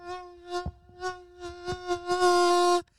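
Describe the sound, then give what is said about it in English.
A woman's voice imitates a mosquito's whine at a barbecue, a steady nasal buzz that pulses up and down for a few seconds and swells louder and harsher before cutting off abruptly. “It says the mosquito at the barbecue trying to talk me into getting that mac and cheese, and it's that lady again going.”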